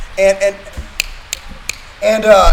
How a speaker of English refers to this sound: I like that finger snap.